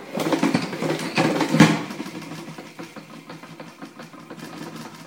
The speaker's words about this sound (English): So as I do this, you're going to hear the colander spinning around inside my salad spinner. Okay, now I'm going to press the button and spin my kale.